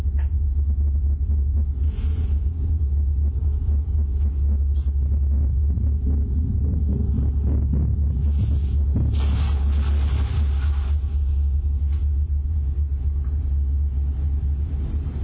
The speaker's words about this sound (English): there's something running across the floor in another room before the keys get knocked onto the floor